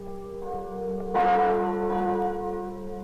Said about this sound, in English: These are the chimes of Notre Dame, Our Lady of Paris, tolling out across the River Seine, ringing in one of the merriest Christmases that France has ever known.